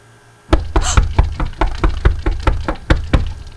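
The station manager raps on a door in a long, insistent series of about a dozen sharp knocks, loud, with an uneven rhythm and no voices.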